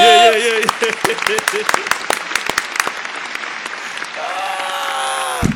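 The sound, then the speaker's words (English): An audience bursts into loud, dense applause for an introduced guest, lasting several seconds, with voices whooping and cheering over the clapping at the start and again as it tails off. “Round of applause”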